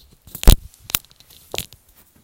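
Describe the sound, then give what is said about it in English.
Paper tears and crinkles in three quick, crisp bursts, the first loudest, with no one talking, as someone grabs a sheet of paper. “I need to grab a pencil and a paper.”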